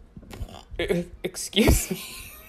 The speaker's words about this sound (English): Excuse me. I think the ghost of Bill Gates' dad is haunting me, because I just like burped in a way where I thought I was going to perish.